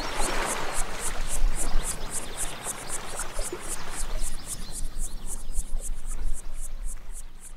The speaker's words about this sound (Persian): صدای موج دریا خوشگله